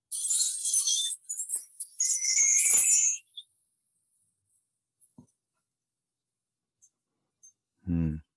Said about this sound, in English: So this is a tree chime thing. It's all made out of keys getting smaller and larger, made for me.